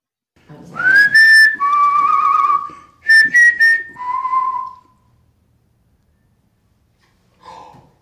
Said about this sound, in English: Whistle? Mm-hmm. Yeah, it does. It's really low because it sounds like it's in another part of the mansion. But it definitely does it, man. It definitely does it.